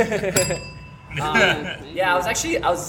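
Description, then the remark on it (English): A single bright bell ding rings out near the start, its tone hanging and fading for about a second while people talk over it. “Ring the bell on that.”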